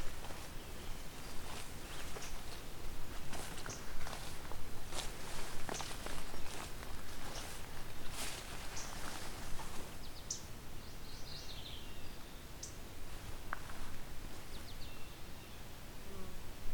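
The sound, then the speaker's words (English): Footsteps crunch through brush, then a mourning warbler sings a few short, bright phrases from some distance away, fairly faint over the rustling. “Oh, there we go, morning warbler.”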